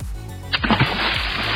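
A sudden splash as a person drops into water from a boat, followed by a steady rush of churning, bubbling water that carries on to the end, with a low droning tone underneath.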